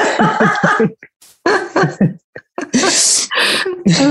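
A single sharp, close sneeze bursts out with a breathy hiss, surrounded by short voiced bursts of laughter-like vocal sounds before and after it.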